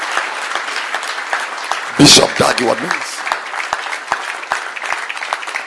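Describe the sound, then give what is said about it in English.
An audience at a conference claps for the pastor, steadily throughout, a dense, continuous patter of many hands that holds at an even level, while a man's voice briefly calls out over the applause. “Clap your hands for my pastor.”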